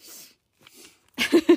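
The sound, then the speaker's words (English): Two soft, quick nose sniffles, followed by a louder, breathier burst of nasal sniffing with a brief voiced edge. “Sorry for my rustling of papers and my nose sniffles.”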